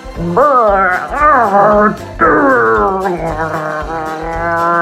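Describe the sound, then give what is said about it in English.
A voice imitates a dog growling for Toby, a character in a children's story, loud, with wavering, drawn-out vocal bursts that rise and fall in pitch over a few seconds, no words spoken. “Growled Toby.”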